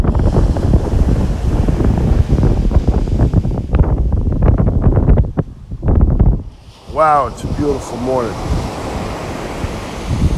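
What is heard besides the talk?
ocean waves breaking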